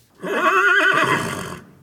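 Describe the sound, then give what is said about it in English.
A single loud horse whinny with a wavering, quavering pitch that rises and then trails off over about a second and a half. “That was the horse.”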